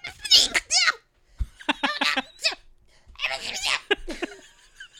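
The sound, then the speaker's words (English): A person makes a series of sharp, breathy gasps and half-formed bursts while trying to sneeze, the noises stuttering and mixed with giggle-like sounds. “I kind of want to leave it in so people know that you're trying to sneeze.”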